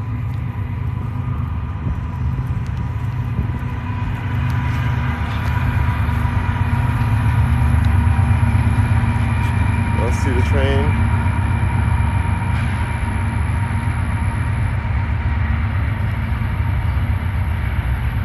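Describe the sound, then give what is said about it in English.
A train rolls past with a steady, heavy low rumble that holds for the whole stretch, joined midway by a brief faint metallic squeal from the rails. “Oh, the train's coming.”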